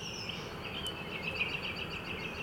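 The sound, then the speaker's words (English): Faint, steady bird chirping, a high twittering chorus of rapid repeated notes over a low background hum, with no one talking. “The fucking birds are perfect.”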